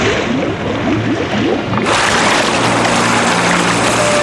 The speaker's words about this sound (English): In the Pacific Ocean, male humpback whales announce themselves to females with a song.